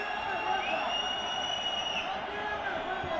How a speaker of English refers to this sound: Uh-oh, what's this? A chant has started up in the crowd. Is that a military cadence? It's the 242 Strontium Corps Tentacle Brigade!